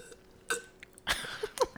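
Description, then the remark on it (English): A Foley-style drinking sound effect: a few wet gulping swallows in quick succession, followed by a bright clink as a glass is set down. No voices. “That sounds like I almost was drinking. And even with the glass, like putting it down.”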